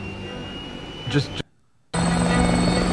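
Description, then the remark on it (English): A helicopter's loud, steady engine roar and whine, cutting out abruptly for about half a second before returning just as loud. “Just getting my chopper.”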